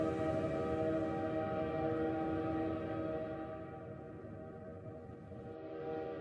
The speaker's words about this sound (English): And this is just like the official trailer? I think that, yeah. Does it start with the train noise?